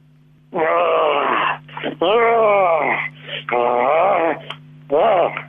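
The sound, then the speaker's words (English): A woman's voice imitates a lion's growl in four long, wavering, moaning bursts with short breaths between, loud and thin-sounding as if over a phone line, with a steady low hum underneath. “I want you to growl for me like a lion, the king of the jungle.”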